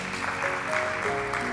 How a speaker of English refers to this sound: Come on and give God a hand clap of praise for all of that.